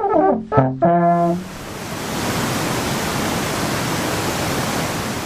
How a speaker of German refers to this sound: Dort, wo bis vor wenigen Jahren der Triftgletscher noch bis zur Bergstation der Triftbahn hinabreichte, verläuft nun ein reißender Fluss durch Felsen und Geröll.